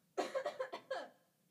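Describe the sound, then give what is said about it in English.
A fairly loud fit of coughing: a quick run of four or five rough bursts, then one more harsh cough that trails off into quiet. “Shit, get a cough.”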